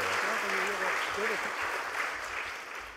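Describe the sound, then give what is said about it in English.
An audience applauds as a sign of welcome, a dense, steady wash of clapping that holds for several seconds and eases slightly toward the end, with a few voices murmuring underneath. “Let's give them a round of applause as a sign of our welcome as well.”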